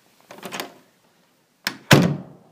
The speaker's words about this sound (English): And then the door opened and my third option walked through the door. My problem had actually come to me.